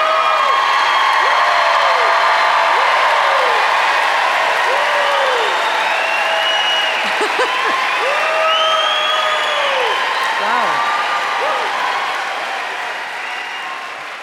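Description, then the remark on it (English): An audience at an author's book talk applauds loudly and steadily, dense clapping mixed with scattered whoops and cheers, gradually tapering off toward the end. “I did not do that, so thank you for the applause.”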